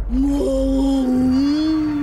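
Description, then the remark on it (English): A voice in a scene from the film Finding Nemo imitates a whale call, holding one long, drawn-out, low, moaning note for about two seconds. The tone wavers slightly in pitch and stays steady and fairly loud throughout. “You know, I speak whale.”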